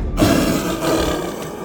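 Fenris the Wolf, a giant black wolf, lets out a deep, rumbling roar and snarl in pain as Odin's spear shears through its jaws, loud, sustained for well over a second with a rough, growling texture and no talking.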